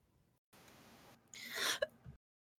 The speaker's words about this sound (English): Sorry, I had to cough.